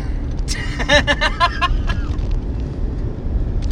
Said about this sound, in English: Well, I've noticed when I've recorded these, you can hear the motor and everything. Yep. Oh, really? Yeah. That's just that'll be a dropping game trademark. Trademark. Can you hear the engine?